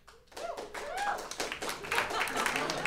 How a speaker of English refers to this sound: Golf claps. You got a few. Golf claps. Few.